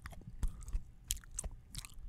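Close-up crunchy chewing of a snack, right against the microphone, with a series of sharp, crackly bites coming every few tenths of a second. No talking.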